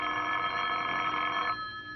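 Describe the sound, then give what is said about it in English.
A telephone bell rings steadily for about a second and a half as a phone call comes in at 9:30, then stops and its metallic tone fades away, with no voices present. “The phone call came at 9:30.”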